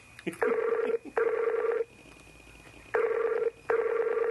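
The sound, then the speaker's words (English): A phone ringtone sounds in a double-ring pattern: two short electronic trills, a pause, then two more. It is loud, with no talking. “I'm sure the viewers are enjoying listening to the ringtone.”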